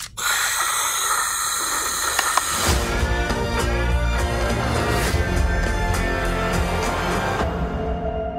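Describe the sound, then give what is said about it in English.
A steady, loud wash of white noise sleep sound, provided by Buzz Lightyear, hisses without pause, its texture shifting about a third of the way in to a rougher, more grainy rush. No one speaks. “White noise is fine.”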